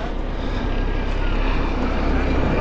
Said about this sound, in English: And overhead, may just hear it in the background, we have a helicopter hovering.